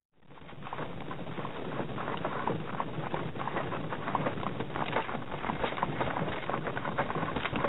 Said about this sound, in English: this is another selection from the Golden Record on Voyager, Horse and Cart